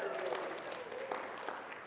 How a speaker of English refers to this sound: You're allowed to clap and cheer, okay? This is good news.